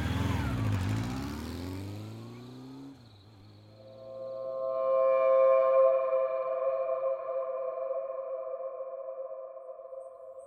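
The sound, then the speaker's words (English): A vehicle's front-mounted engine roars to life at the press of a go button with a loud, sweeping rumble that dips in pitch, then settles into a steady, humming, tonal drone that carries on for several seconds as the vehicle peels out into the night. No one speaks. “And you smash the go button, and it roars to life.”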